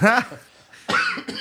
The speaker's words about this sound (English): I have to cough.